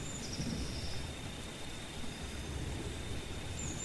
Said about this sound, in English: The rain was gradually turning into a soft drizzle, but I didn't want to move.